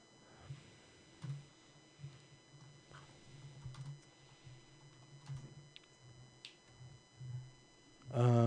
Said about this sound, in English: Give me a sec, because I'm typing, and I'm still on my high horse.